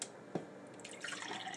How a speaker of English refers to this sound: You pour another glass of ozonated water.